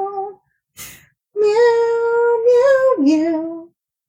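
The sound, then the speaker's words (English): A cat lets out a short mew, a brief breathy burst, then a long, loud, drawn-out meow that wavers in pitch and slides lower toward the end. “Cat podcast. Meow, meow, meow.”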